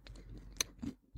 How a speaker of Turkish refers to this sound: Kekimden bir ısırık alacağım bu arada. Şapırdanma sesim çok geliyor mu ya acaba?